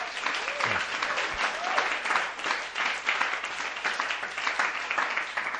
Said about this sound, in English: Give a clap offering to the Lord right now.